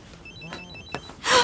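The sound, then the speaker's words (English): A phone rings with a quick run of thin, high electronic chirps. Near the end, a louder, breathy rush of noise cuts in. “Oh shit, someone's calling me.”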